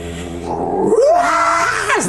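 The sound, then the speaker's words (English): Demonic, screaming howls roar up from a war machine's engine over a low engine-like rumble as flame gouts out the back, with wailing tones that rise and slide in pitch. Loud, lasting about two seconds with no talking. “The screams of the damned just kind of roar up, flame gouts out the back of the war machine.”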